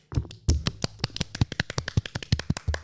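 A small group breaks into brief applause, a quick, uneven run of sharp, fairly loud hand claps that keeps going for a few seconds with no voices over it.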